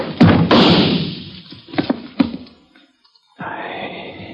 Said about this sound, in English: The bullet splintered into the chair before it even toppled over. But the flash of his gun showed me where he was.